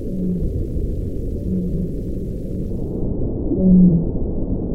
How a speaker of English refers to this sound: His team dropped a sensitive and sturdy ocean microphone, known as a hydrophone, down into the deep. We recorded several different baleen whale calls.